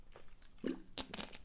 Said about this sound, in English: Oh, glug of water, I'm getting dry.